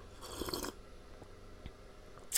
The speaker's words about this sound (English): I have my drink in my hand right now, okay? I'm just gonna sip it, okay?